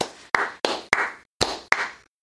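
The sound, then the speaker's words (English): Half a dozen sharp, loud claps in two short bursts for the Macbeth characters called up after a tie vote, each crack ringing out briefly before the next, with a pause between the groups and no voices. “I guess we shouldn't clap for these monsters.”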